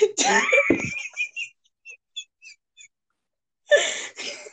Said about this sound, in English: Don't judge me and my wheezing.